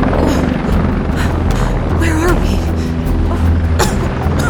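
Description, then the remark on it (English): A helicopter at an abandoned airfield: its heavy, steady rotor and engine roar, loud, drones without a break, with wind-like rushing noise layered over the deep rumble. “An abandoned airfield? Helicopter?”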